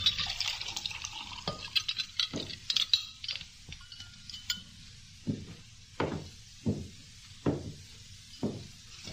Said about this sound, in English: Sister Love lifted the pitcher and began to pour the lemonade